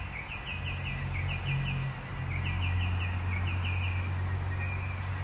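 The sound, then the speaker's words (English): Birds call repeatedly in short, quick chirping bursts throughout, set somewhat back over a steady low droning hum, with no one talking. “You see, if I was imagining hoping that the podcast was good, I'd be a little worried about the volume of the bird noise.”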